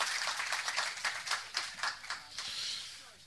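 An audience at a seminar applauds Stephen Cave, a dense patter of many hands clapping steadily for a few seconds, moderately quiet, with no one speaking over it.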